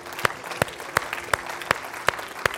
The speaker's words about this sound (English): And anybody that's thankful, give the Lord a clap and a shout offering right now.